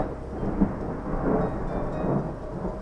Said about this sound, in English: A thunderstorm hung over one of the mountains in the distance and rumbled quietly.